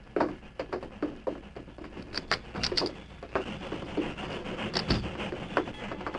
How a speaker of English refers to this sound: I hear the train stopping.